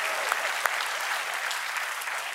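An audience at Turning Point USA's Student Action Summit applauds during Matt Gaetz's speech, a dense wash of many hands clapping at an even, fairly loud level with scattered sharper claps standing out, and no voices.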